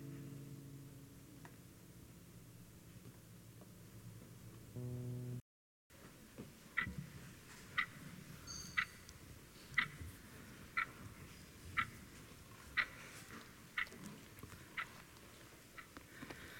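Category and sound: household object, clock ticking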